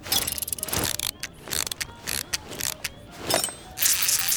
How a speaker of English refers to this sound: Well, now that Peary can't step on it, let's see where the wind-up rat goes. Let's hope it works.